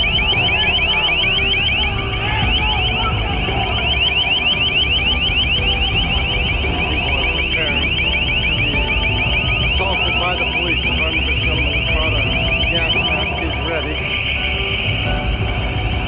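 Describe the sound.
A crowd control acoustic device blares a loud, piercing, warbling high tone continuously for the whole stretch, painful to the eardrums, with crowd noise and voices rumbling underneath, as the line advances down Pine Street.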